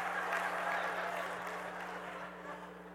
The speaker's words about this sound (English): I'm just astonished at the things you ladies clap for. Where's the sympathy here?